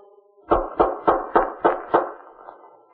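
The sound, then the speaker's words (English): Six firm knocks on the front door of a grim-looking, quiet place in a quick, steady rhythm, each a solid wooden thud, followed by a brief fading resonance and then quiet; the knocking is repeated. “I better knock again.”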